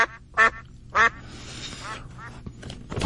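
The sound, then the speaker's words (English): A duck quack sound effect: a duck quacks loudly several times in short nasal bursts, with fainter quacking trailing off in between, prominent with no talking over it. “Remember when you hear the duck quack, that's your cue to be the first caller”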